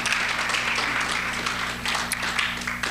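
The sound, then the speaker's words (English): A crowd applauds steadily, a dense wash of many hands clapping at once, fairly loud and continuous for the whole stretch with no voices standing out. “Okay, and if at any time in your life y'all were ever fans of any one or all three of these classic American television shows, Gilligan's Island, Andy Griffith, or Leave It to Beaver, can I get you to bang your hands together?”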